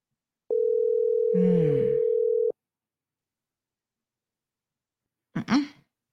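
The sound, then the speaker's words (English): A steady electronic phone tone from a call to the Premier and Panton that goes unanswered sounds for about two seconds while someone briefly clears their throat over it. Silence follows, then a short vocal noise near the end. “Premier and Panton never answered the phone.”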